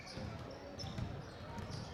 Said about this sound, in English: Long takes a couple of dribbles, a good fake, now loses the ball, but he was slapped, I think, and fouled before that loose ball occurred.